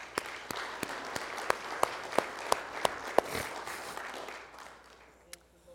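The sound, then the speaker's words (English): An audience in southern Oklahoma claps their hands for the Lord in a steady, evenly spaced rhythm over a dense wash of applause. The sound gradually fades toward the end, where a single sharp clap remains. “Would you please give the Lord another hand clap?”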